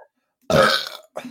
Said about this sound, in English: Dude, nice burps. On point today.